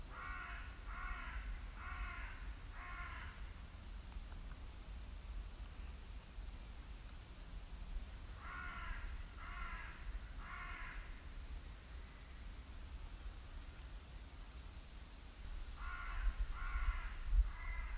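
A raven flying above the treetops caws in three separate bursts of three to four harsh calls over a steady low rumble of wind, with no one speaking.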